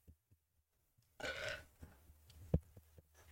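A loud, throaty burp lasting about a third of a second, followed by a few softer gulping, guttural sounds and a sharp low thump; no one speaks.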